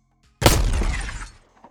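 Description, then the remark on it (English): A single loud blast as a drone is shot and shatters to pieces, the crunching, splintering debris ringing out for about a second before fading away, with no voices. “The drone was firmly in his sights now, and he pulled the trigger and shattered it to pieces.”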